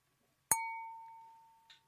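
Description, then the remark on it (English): Wine glasses clink together in a toast: a single bright clink followed by a clear ringing tone that slowly fades over more than a second, with a faint small tap near the end. No talking. “Wish I can get drunk off of wine. If you try really, really hard. Cheers.”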